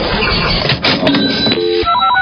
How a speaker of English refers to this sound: Just listen for the Channel 94.1 cash register.